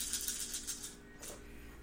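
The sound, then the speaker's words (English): A quick flurry of small hard clicks and clatters as dice are rolled during a game, tumbling and bouncing across a table, followed by one last knock before settling; fairly quiet, with no talking. “Oh, that's a really good roll.”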